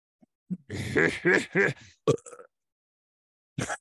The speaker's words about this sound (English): Try it again, and I'll burp behind it. Hold on. I have to get a burp going.